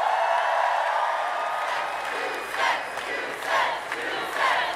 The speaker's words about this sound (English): And it's a pretty wild thing to see a crowd chanting about a tax rate. Right. It's kind of become, to go back to the Trump comparison, Warren's build the wall.